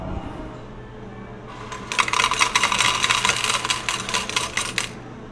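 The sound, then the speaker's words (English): Quarters clatter out of a change machine in a fast, bright metallic cascade lasting about three seconds, many coins jingling and ringing together over a low background hum. “Here, you can have some quarters.”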